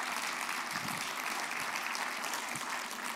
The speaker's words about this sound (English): And your pastor is one of the best. One of the best, period. In fact, I think if we gave him a round of applause, that'd be perfectly appropriate.